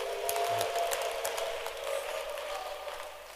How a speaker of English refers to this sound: Go back to verse 20 now. Clap your hands for him.